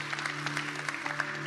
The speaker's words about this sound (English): And if you know our story, my youngest son has beaten cancer twice. Hey, amen. That's something you can clap about.